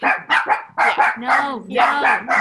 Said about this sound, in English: dogs. Shut up.